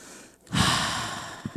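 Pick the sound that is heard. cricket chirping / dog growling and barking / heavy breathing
heavy breathing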